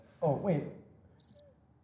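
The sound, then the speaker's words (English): Two short bursts of cricket chirping played from a sampling pad, each a quick run of high, trilling pulses separated by a brief pause. A voice murmurs faintly underneath the first burst. “Is it working? It's crickets.”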